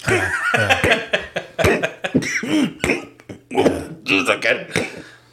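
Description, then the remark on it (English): A voice imitates hiccups: a quick run of short, loud, gulping vocal bursts, repeated about a dozen times with brief uneven gaps between them. “God damn, they give me hiccups like a motherfucker because really?”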